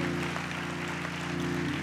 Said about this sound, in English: If you received anything from that, give the Lord a hand clap of praise.